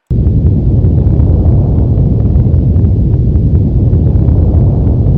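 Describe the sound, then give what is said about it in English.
A deep, continuous earthquake rumble roars steadily for several seconds, loud and heavy in the low end, with faint crackling and popping scattered through it and no voices. “So I went out and found an audio file that you said really does sound like an earthquake.”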